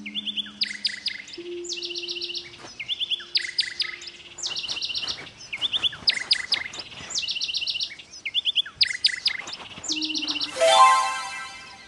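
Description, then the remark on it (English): A bird in an audio game chirps in repeated quick bursts at a steady rhythm, clear, over a faint low hum, ending with a brief bright swoosh. “Now try to catch the bird.”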